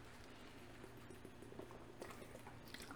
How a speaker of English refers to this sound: Oh, excuse me, I had to get a sip of water, which I've mentioned before. I hate the taste of water.